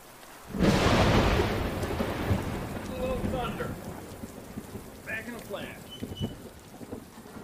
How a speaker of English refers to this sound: A thunderstorm has loud noises. The sound of the thunder.